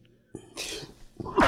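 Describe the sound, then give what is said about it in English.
A person sneezes: a breathy build-up of short inhales leads into a sharp, loud burst of air at the very end, with no talking. “we'll get to all that after … sneezes”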